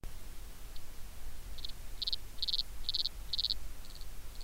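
An insect, sounding like a cricket, stridulates by rubbing its penis against its ridged abdomen to attract a mate, in a series of short, buzzy zipper-like chirps, about one every half second, building then fading slightly, over a low background rumble with no voices.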